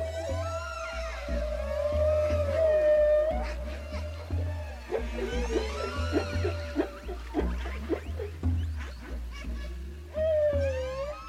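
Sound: whale song vocalizations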